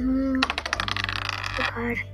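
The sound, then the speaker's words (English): A rapid burst of small hard clicks and rattles as several dice tumble and clatter across a tabletop for about a second, fairly loud, with a faint voice before and after. “Use all the dice today.”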